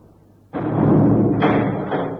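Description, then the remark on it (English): A heavy door shaped as a dragon's mouth, leading into an inner temple, slams shut with a sudden loud thud, then a deep rumbling reverberation and a second impact as it settles and locks, with no voices. “Hey, the dragon's mouth, it's closed us in. It's only shut.”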